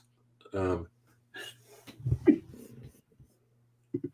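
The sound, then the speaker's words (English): A short, voiced sneeze brought on by allergies bursts out, followed by a few muffled vocal sounds and breaths, then a brief sharp sound right at the end. “Excuse me. Bless you. Man, allergies kicking in all of a sudden.”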